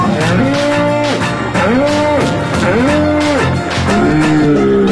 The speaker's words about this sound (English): Wait, let me speak your language. Cows go moo.